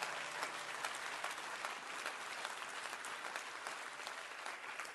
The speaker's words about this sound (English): Would you clap your hands real big and say, "I'm going to help you tonight, Pastor."